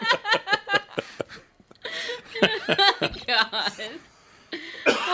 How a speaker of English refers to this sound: There we go. The cough's coming back now.